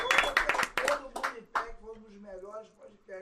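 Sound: applause clapping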